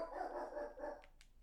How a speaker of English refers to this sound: Sorry, our dog's barking.